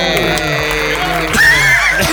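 A loud, steady burst of crowd applause mixed with cheering and whooping voices, filling about two seconds without a break.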